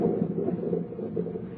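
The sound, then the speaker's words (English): A steady, low rumble of thunder rolls on without a break, deep and muffled, holding an even loudness throughout with no distinct cracks or voices. “Still thundering.”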